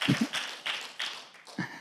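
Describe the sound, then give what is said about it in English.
A church audience claps together in a steady, fairly quick rhythm, about three claps per second, each one a bright, crisp burst blending into the next, with no talking over it. “It's okay to clap. That's fine. Yeah. We're a clapping church.”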